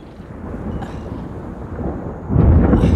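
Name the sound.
thunder and rain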